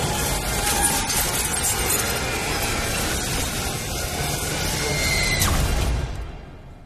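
In an Evil Dead scene, a violent, roaring burst of evil force crashing in through a door, with a dense rush of noise and wind, splintering cracks and glassy clinks sustained for about six seconds before abruptly cutting off.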